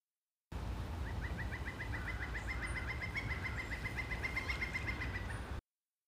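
A pileated woodpecker calls in a long, rapid run of evenly spaced, ringing notes lasting several seconds, set against a steady rushing background hiss.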